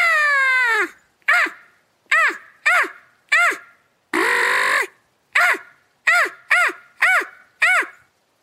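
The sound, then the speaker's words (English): A person imitates a crow with the mouth, giving about a dozen loud, harsh caws in a quick, uneven series, a couple of them drawn out longer, with no talking. “And so I learned how to do a crow call with just my mouth, not a crow call.”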